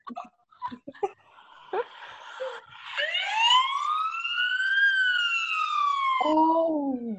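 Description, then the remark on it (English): A voice imitates a Canadian police car siren, giving one long, loud wail that climbs and slowly falls before dropping low at the end, preceded by a few short vocal bursts. “The police car goes like.”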